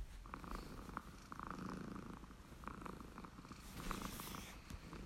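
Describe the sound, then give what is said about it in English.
A little striped cat purrs softly and steadily, a low rumbling rhythm of repeated breaths pulsing throughout, with no voices. “Nadia picked up 3 sheets of purple paper, then heard an extra soft purring sound.”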